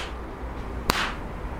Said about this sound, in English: that was the sound of me knocking my namesake out.